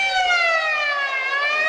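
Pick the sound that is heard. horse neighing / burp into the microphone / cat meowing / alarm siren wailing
alarm siren wailing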